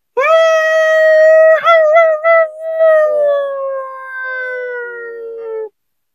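sound effect, wolf howling

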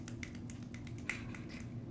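human body sound, finger snapping

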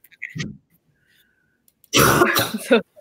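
human body sound, cough

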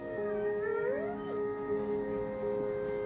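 animal, dog howling and whining

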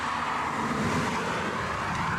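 vehicle, car

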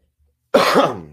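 human body sound, cough

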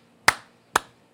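crowd, applause

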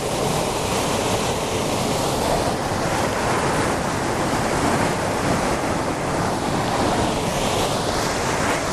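nature, rushing waterfall

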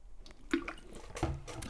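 food or drink, drinking water

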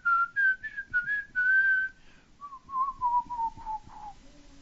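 human body sound, person whistling a tune

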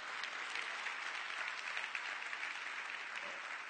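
crowd, audience hand clapping

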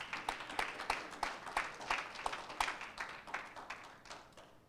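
crowd, audience hand clapping

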